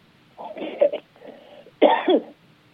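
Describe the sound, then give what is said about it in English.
A person coughs several times, a quick cluster of rough coughs followed by a brief pause and one louder, harsher cough at the end. “You did not make me start coughing, I swear.”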